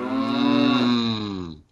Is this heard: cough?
no